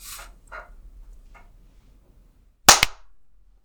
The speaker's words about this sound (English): That clap was so good, I didn't even hear, like I heard yours, but it was just so simultaneous with mine that it all blended into one sound.